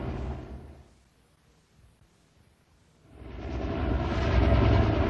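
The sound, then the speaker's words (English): A hovering helicopter's broad, rushing engine and rotor roar dips away for a couple of seconds, then swells back loud while people below prepare a stretcher for a hoist rescue. No one speaks. “Helicopter not have enough gas to last all night.”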